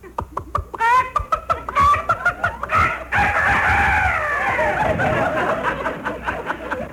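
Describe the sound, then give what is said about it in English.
Mel Blanc, on the phone in his fix-it shop, mimics a rooster's crow as "Dr. Rooster", with quick clucking, chuckling bursts followed by a long, strained cock-a-doodle-doo style call, loud. “I have a phone call for you from Dr. Rooster.”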